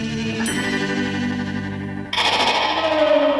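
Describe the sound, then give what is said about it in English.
Dense, swirling guitar tones drenched in reverb and effects, at least a couple of layered tracks in stereo with right-to-left panning, forming a thick wash that suddenly brightens and shifts midway, with a rising gliding tone near the end. No voices. “They use guitars and reverb and God knows what else to make that noise.”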